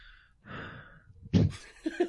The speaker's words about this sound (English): No, but you said you're breathing into it.